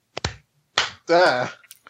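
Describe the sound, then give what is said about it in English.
A single sharp hand clap rings out near the start on cue after a countdown from five, followed shortly after by a person speaking. “5, 4, 3, 2, 1, clap.”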